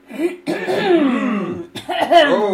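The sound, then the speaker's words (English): A person coughs loudly. A short hack is followed by a drawn-out, throaty coughing fit, a brief pause, then another rough burst. “The first thing is, I wish we had a cough button on our record software, which maybe we do, but excuse me, please, because I totally have to cough.”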